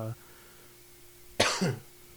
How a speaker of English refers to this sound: It seems like every time I do a podcast, I start coughing. So, which is a sign of corona.